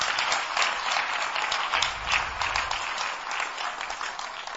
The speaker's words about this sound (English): Clap for yourself once again. The clapping is not encouraging.